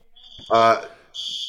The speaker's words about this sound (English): I'm dealing with my fire alarm again, guys.